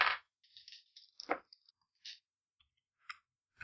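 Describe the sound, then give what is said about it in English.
Dice clatter across a hard table in a quick burst of sharp clicks and rattles, followed by a few scattered, fainter taps as they settle. Fairly quiet, with no voices. “Might just start rolling three dice instead.”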